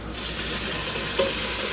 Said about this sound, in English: an onion, a medium small size onion. Chop it up thinly. Saute that in olive oil. I'm doing it. I'm really doing it. I'm sweating the onions here.